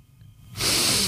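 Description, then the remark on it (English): A short moment of quiet, then one loud, airy rush of breath through the nose, sustained for about half a second with a hissing, snort-like texture, as a person breathes in and out through the nose. “Breathe in through the nose, out through the nose.”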